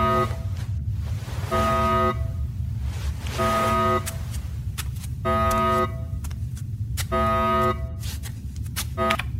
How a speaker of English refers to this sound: It's not like I can sleep with all those alarms going off.